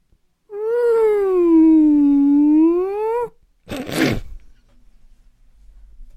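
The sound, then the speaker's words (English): A person imitates a whale call with one long, loud moaning tone that dips in pitch and rises again, followed by a brief breathy burst and then quiet. “Do a whale.”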